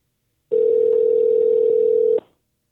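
A steady, unbroken dial tone hums for about a second and a half at a single mid pitch, then cuts off abruptly as a phone call to California Car Cover is transferred; no voices are heard.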